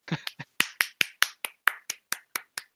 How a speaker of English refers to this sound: Are you clapping by smacking the tail of two fishes together? That's what it sounds like.